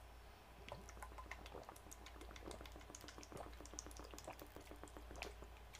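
Water pours steadily into a container, with bubbly gurgles and scattered splashy drips running for several seconds, fairly quiet, with no talking.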